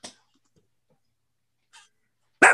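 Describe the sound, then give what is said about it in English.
A dog lets out three short, sharp barks or huffs spaced well apart amid otherwise quiet, the last one noticeably louder than the first two. “So oh, my dog is here.”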